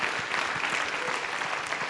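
An audience applauds the Lord during worship, a dense wash of many hands clapping at an even, sustained level with no voices standing out.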